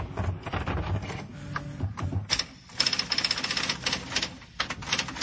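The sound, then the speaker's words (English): Rapid, uneven typewriter keystrokes clatter continuously, with brief pauses and a few sharper mechanical clunks between bursts of typing. “Typewriter typing again.”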